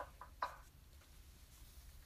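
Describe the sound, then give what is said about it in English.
Three soft knocks on a hidden door in a dead-end wall in quick succession, the third slightly sharper, followed by quiet room tone. “You knock on the hidden door.”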